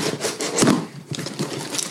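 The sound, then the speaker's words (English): Paper crinkles and tears off a package that arrived by mail, in a steady stream of dry, scratchy rustling. A brief pause falls midway, then the ripping and rubbing resume. No one speaks. “I'm having trouble with that one piece of paper.”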